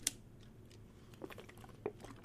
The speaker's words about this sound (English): Sorry, I know it's not professional to drink my bottle of water on the air.